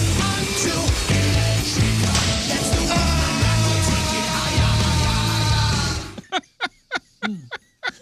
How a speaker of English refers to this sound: The best is the end of that clip, though, when they hit him. And it's just a guy screaming for his dear life.